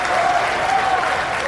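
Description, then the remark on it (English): An audience claps steadily, a dense, even wash of applause filling the whole moment without pauses, with no voices standing out above it. “So how about a round of applause for this?”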